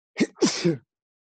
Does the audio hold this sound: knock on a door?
no